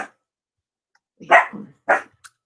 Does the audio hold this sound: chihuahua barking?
yes